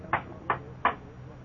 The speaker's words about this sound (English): There's a little breezeway between the garage and the house. I tried the back door knocker, lightly. Listened against the door for sounds of life inside. Not a sound. Tried the knocker again, with due respect to the neighbor.